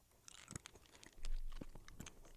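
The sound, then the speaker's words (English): Quiet chewing on a hard, sticky gummy candy, with scattered wet smacks and soft crunchy clicks, and a low rumble of handling noise partway through. No one speaks. “I can't decide if we're supposed to chew on this or not. It's like really hard to chew.”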